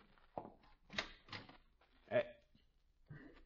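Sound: front door being opened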